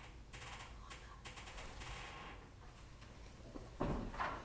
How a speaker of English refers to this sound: Sorry about that, everyone. Somebody was knocking on our office door.